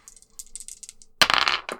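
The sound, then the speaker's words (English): Two dice are shaken, clattering and rattling in quick bursts, then rolled onto a table with a louder tumbling clack, settling quickly. “Okay, we're just going to do solid chill rolls with two dice.”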